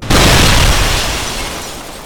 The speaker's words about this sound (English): And then, an explosion!